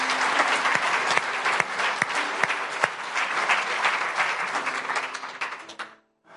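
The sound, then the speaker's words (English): An audience at a church service bursts into steady applause for a group of people, many hands clapping in a dense, bright wash with sharper individual claps standing out, sustained for several seconds before quickly fading to silence. “One of the things you do, yeah, go ahead, you can clap for these guys first.”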